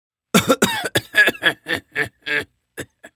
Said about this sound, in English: The demon coughed for a good minute before continuing.